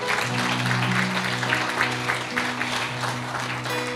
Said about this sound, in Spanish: Iglesia, dale un fuerte aplauso a Dios en esta mañana.